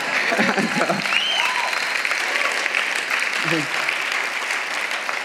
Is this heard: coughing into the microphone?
no